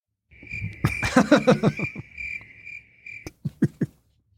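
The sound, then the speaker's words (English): Crickets chirp in a steady, continuous trill for about three seconds, with a few soft rustles mixed in, followed by several sharp, separate clicks or taps after the chirping stops. “let's play a clip, say, from CNN about this remarkable new study. Crickets.”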